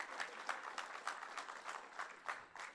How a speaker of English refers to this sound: Give a clap to the Lord for his life.